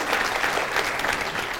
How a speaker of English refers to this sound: Let's give our first-time guests and our television audience a big, huge round of applause, man.